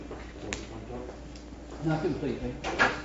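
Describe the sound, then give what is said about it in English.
A front door swings shut with a soft thud early on, followed by a louder latching clunk near the end, against faint indistinct voices. “time to close the front door, please.”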